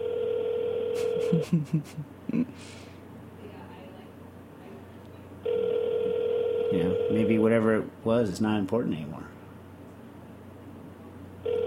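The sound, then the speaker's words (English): A phone's electronic ring for an incoming call from the speaker's son sounds in two long, steady buzzing bursts separated by a pause, with a person's voice speaking over and between them. “He's usually just calling me to...”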